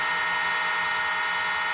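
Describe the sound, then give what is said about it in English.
The bark of a dog named Gabe, heavily distorted by repeating a processing procedure over and over, smeared into a steady, high, buzzing whine much like a dentist's drill. It stays continuous and fairly loud for nearly two seconds, with no talking. “This is a dog barking.”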